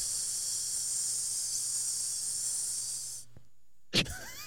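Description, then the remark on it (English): A steady, fairly loud hiss of escaping air runs for about three seconds, then cuts off abruptly into silence, followed by a brief burst of noise. “All the air ran out? Oh, yeah. Full of steam.”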